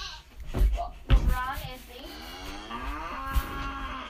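A single long, drawn-out cow moo, loud, rising and wavering over a few seconds after a couple of brief thumps at the start.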